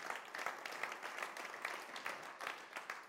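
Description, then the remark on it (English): A crowd claps steadily, dense overlapping hand claps at a moderate, even level for a few seconds, with no voices standing out. “Yeah, you're clapping now.”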